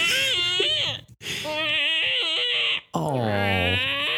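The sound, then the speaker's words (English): A voice imitates an office chair creaking as someone leans, or only moves a shoulder while reaching for coffee: three drawn-out, wavering, whiny squeals, high and nasal, rising and bending in pitch almost like a baby's whimper. “Like, it's literally just my shoulder moving, and my chair's like.”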